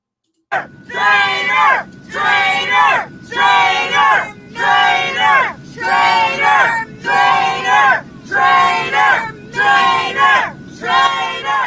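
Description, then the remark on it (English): A full plane of Trump supporters shouting and jeering in unison at Mitt Romney, calling him a traitor, a loud rhythmic chant repeated about ten times at a steady beat with short gaps between each burst. “So it's a full plane of Trump supporters calling Mitt Romney a traitor.”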